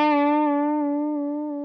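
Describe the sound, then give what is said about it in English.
A sustained, buzzy synth tone holds one steady pitch, its modulation following a perfectly symmetrical sine wave so it wobbles smoothly and evenly in a regular wah-wah pulse, loud with no voices. “You can hear it's just going da wa wa wa, and it's completely symmetrical.”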